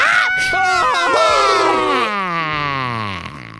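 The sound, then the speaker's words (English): Two shrill, high-pitched little voices scream together in wavering, descending wails for several seconds, loud, a bee and a cricket clinging to a car's radio antenna, performed by human voices. “A cricket flying by grabs a hold of the antenna. Both are screaming.”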